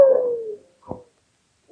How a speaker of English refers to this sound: Howling husky dogs tell us we're in the land of Eskimos.